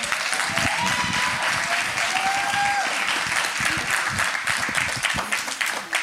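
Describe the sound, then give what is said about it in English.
An audience applauds steadily for a man of God as the microphone is passed over to him, dense clapping filling the whole stretch at a loud, even level, with a few cheers and whoops rising briefly over the clapping. “Give him one more applause.”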